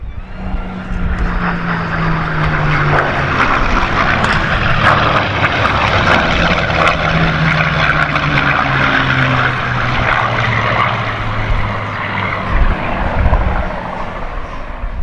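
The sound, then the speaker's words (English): A propeller airplane engine drones loudly and steadily throughout, its pitch sliding gradually lower as the aircraft flies past, with no voices. “People being interested in our little airplane.”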